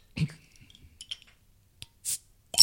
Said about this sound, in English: So we'll go ahead and use your trusty bottle opener. Yeah, we'll do that.